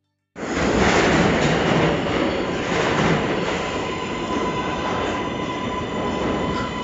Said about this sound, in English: getting on the train.